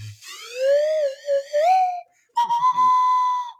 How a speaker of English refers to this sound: I think that deserves a slide whistle